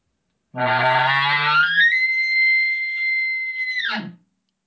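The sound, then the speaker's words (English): A person imitates an elk bugle: a raspy, low growl rises into a long, steady high-pitched whistle, then breaks off with a short grunt. One loud call, no talking. “And hopefully I don't resort back to how I usually call, but I'll try to get that growl at the beginning. And then, you know, how one of my old bugles used to sound.”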